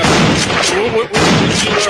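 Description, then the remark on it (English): A loud gunshot sound effect: heavy, booming blasts that fill the whole clip, with a short dip near the middle before a second burst hits just as hard. “Gunshot that right there.”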